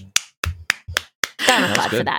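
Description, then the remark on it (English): Five sharp, evenly spaced claps or finger snaps ring out in quick succession, crisp and fairly loud, followed right away by someone starting to talk. “Save your applause for when it is good.”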